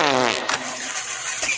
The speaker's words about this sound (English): I'll put a couple farts on it, and then do a fart. Yeah. Do a fart.